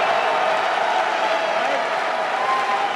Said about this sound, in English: Red hat, get a cheer. Red hats get the biggest cheer of the night.